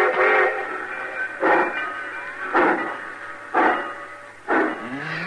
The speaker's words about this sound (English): Cussed train pulling out right on time at once.